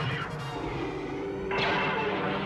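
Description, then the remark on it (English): Sci-fi film explosions, including the explosion of Alderaan, and laser blasts designed by Ben Burtt crash over a low, sustained tone, with a sudden louder burst of roaring noise partway through that stays loud to the end. “These wonderful laser sounds by Ben Burtt.”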